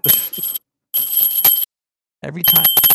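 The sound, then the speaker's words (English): Bright, tinkling bells jingle in three short bursts with brief silences between, loud, with a few sharp knocks mixed in, as a microphone is bumped. “If you bump the mic, you hear bells.”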